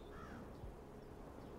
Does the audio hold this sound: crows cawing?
yes